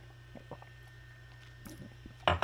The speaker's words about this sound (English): Let me sip my iced tea and fucking gather myself here.